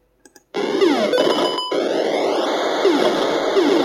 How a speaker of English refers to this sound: My third great memory, if you don't recognize the sound effects, is from a game called River Raid, which I got on a Christmas, I think it was probably around 1983, 1984. It was for the Atari 5200, my version.